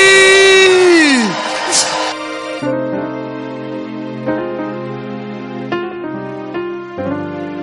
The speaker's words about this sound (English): I want you to stand to your feet with shouts of Jesus' joy. Make some noise and welcome